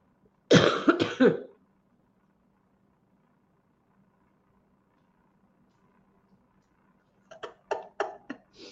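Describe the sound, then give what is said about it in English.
A harsh burst of coughing at the start, then a quiet stretch with a low steady hum, followed by another cluster of short, sharp coughs near the end. “your cough.”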